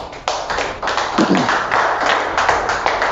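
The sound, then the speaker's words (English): A crowd applauds for a few seconds during a sermon, many hands clapping at once in a dense, steady patter that sounds fairly loud, with no voices standing out. “Clap for Jesus.”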